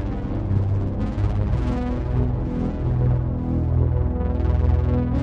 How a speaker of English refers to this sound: you take a contact microphone and attach it to a surface of metal and then bang on it and run it through a million distortion pedals until it just sounds like explosions. Beautiful, isn't it?